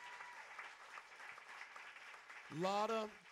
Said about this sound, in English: Let's give the Lord a hand clap. Amen. And we're just going to clap. We're excited.